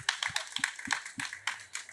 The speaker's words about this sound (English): So First of all, just round of applause for getting these four people together for this panel.